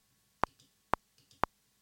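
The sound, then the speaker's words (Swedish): A metronome ticks three times at an even, brisk pace, each tick a sharp, bright click with a faint softer echo just after it, and no talking. “Men jag ska inte ha någon metronom. Nej, men den har du där uppe.”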